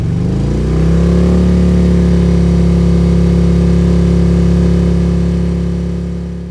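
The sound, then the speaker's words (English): A motorbike engine revs up over the first second as the bike spins out of sand and roars onto a gravel road, then holds a loud, steady, low droning roar that eases slightly toward the end. No voices. “She roared out and onto the gravel road, the bike lurching and screaming.”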